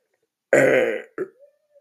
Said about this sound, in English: Oh my God, that burp was wild.